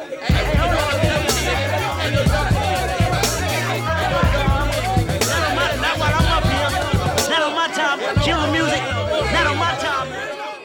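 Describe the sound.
A loud crowd of overlapping, agitated voices shouts and chatters at a concert, the heated commotion holding steady for about ten seconds over a low, thumping background.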